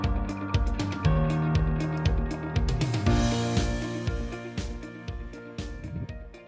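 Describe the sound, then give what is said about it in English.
Upbeat instrumental music plays on its own, with a steady, punchy beat under sustained melodic tones, holding a fairly loud, even level throughout with no one speaking. “You hear some really? Music in that the background?”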